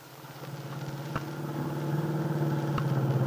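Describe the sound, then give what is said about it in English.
A car engine hums steadily with a low rumble that slowly builds in loudness, joined by a couple of brief thumps, as the car is driven toward the Lane Farm on Willow Road on a Sunday afternoon in a radio drama. No one speaks. “Dell Shipley, with Aunt Mary on the seat beside her, is driving her car toward the Lane Farm on Willow Road.”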